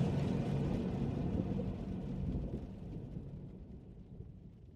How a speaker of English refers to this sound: The deep chug of pistons and diesel woke me, followed by a light pressure on my shoulder.